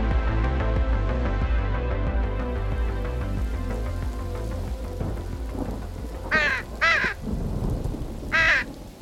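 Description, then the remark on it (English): Three harsh, raspy caws from a crow inside an apartment ring out near the end, two in quick succession and one after a short pause, over a steady low rumbling background. “Before we get all judgy, yes, I have a crow inside my apartment.”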